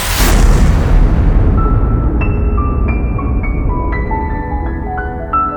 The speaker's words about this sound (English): And so, black holes are not eternal. They evaporate away at an increasing rate until they vanish in a gigantic explosion.